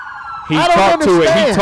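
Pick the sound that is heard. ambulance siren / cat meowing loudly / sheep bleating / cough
ambulance siren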